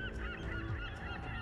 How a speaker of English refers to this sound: The sound of crying gulls brought Medusa's attention back to the task at hand. She spotted birds up ahead, hovering over a tiny island, if you could call it that, It was barely more than a few craggy rocks poking up out of the ocean.